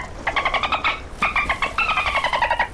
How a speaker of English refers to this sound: And they're jumping out of the water, playing in the waves. What do I spy? Dolphins!